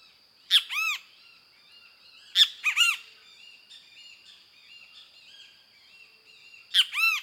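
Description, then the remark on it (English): Three loud, harmonic calls from a kiskadee perched on a dead limb ring out close by at intervals, while fainter, excited chattering calls from another kiskadee carry on steadily in the distance between them. “Several minutes later, the same kiskadee flies into view, lands on a dead limb close by, and gives a series of typical calls as another kiskadee sounds off excitedly in the distance.”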